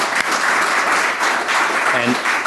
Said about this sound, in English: So I have a round of applause for everyone.